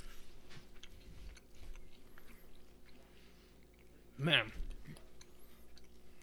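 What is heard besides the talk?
chewing beef jerky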